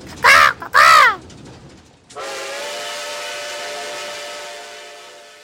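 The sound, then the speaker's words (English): A crow gives two loud, harsh caws in quick succession, followed after a short pause by a long, steady whistle-like drone that slowly fades. “No one can scout for danger like a crow.”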